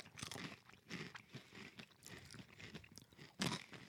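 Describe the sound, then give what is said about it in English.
Loud crunching of crispy guacamole-flavored snack chips being eaten, a steady run of chewing bursts with a sharper, louder crunch near the end, and no talking. “The crunch is so good on these suckers. It's a solid crunch.”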